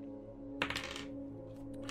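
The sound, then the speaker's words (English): Physical dice clatter across a hard tabletop in a short burst of quick clicks, then settle with a few faint ticks over a steady low hum. “Oh, I have my dice back.”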